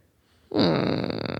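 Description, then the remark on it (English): A person imitates the snore of a fat cat with a single sustained, buzzy, rattling breath sound that starts abruptly and holds steady for about a second, fairly loud. “Because she's a fat cat, so she snores.”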